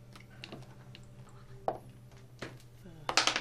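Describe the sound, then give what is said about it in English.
Dice rattle and clatter across a hard table in a few quick bursts of clicks as a perception check is rolled, the last roll the busiest, over a steady low hum with faint background murmur. “Roll perception.”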